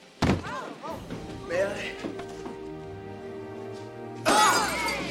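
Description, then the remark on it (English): Glass cups and pitchers, thrown on the floor and stepped on by a ranting man, smash and shatter on a hard floor in two loud bursts, one near the start and one near the end, with the man's voice talking between the crashes. “And he's like throwing glass cups and pitchers on the floor and stepping on them as he does this, which you will hear.”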